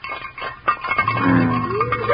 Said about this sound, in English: If he does it, this will be a memorable day in the history of Farr Flats. Quiet now. I'm going to rattle a frying pan.